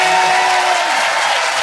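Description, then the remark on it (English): Loud, sustained applause from an audience for Tim Minchin, a dense steady wash of many hands clapping with no gaps, filling the whole moment without any voices on top. “Ladies and gentlemen, we bring you a massive round of applause, Tim Minchin!”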